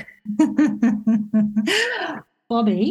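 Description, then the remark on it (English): Heavy, rhythmic breathing in quick voiced pulses, about five short huffs followed by a longer rasping breath, then a brief pause and another breathy exhale. It is loud and has no talk over it. “everyone can probably hear he's breathing.”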